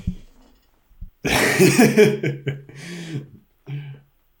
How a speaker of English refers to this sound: One second, I got a cough really bad and I'm going to mute my mic for a second.